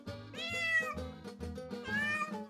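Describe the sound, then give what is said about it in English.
A cat meows twice in quick succession, drawn-out, rising calls that sound clear, with a faint low murmur of background noise underneath, at a pizza restaurant where cats roam around the diners. “It's the only restaurant where you can eat good pizza while a bunch of cats roam around you.”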